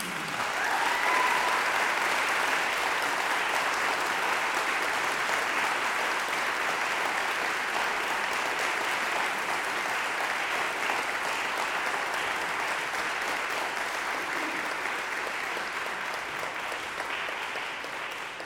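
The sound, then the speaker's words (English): An audience applauds steadily for about eighteen seconds in honor of young choir members, a dense, even wash of many hands clapping that holds its loudness throughout before easing slightly at the very end. “Let's honor them with our applause.”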